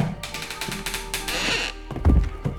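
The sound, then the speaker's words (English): A man's body thuds onto the floor with a loud, deep impact near the end as he is thrown from a rocking chair, after a stretch of rustling, scuffling movement and a few lighter knocks. “He was once again thrown to the ground, this time with more intensity.”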